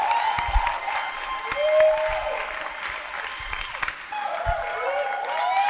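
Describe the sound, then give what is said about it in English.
An audience claps and cheers for the speaker's wife as she comes forward to speak, a dense, steady wash of applause with scattered whoops and shouts rising over it throughout. “Yes, clap for her as you come.”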